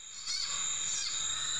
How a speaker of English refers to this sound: That was an example of the sound. Yeah, actually, that was a pretty good example. But no, it was like a squealing. I thought it was a frog. I think there was just like, it was like the snake was coiled up in the grass, and it was making that sound.